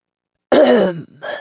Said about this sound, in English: She is caught by a spasm of coughing, a deep rattling smoker's cough.